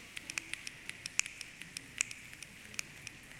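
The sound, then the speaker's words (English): Many fingers snap in a loose, irregular patter imitating light rain sprinkles, sharp crisp clicks overlapping like scattered raindrops, fairly soft and continuous over a faint hiss, with no voices. “And now we're going to snap. You hear the sprinkles?”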